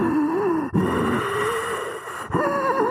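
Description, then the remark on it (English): A voice imitates heavy, exaggerated breathing down someone's neck: loud, drawn-out huffing breaths with a throaty, groaning edge, broken by two brief pauses, with no words spoken. “I felt someone breathing down my neck.”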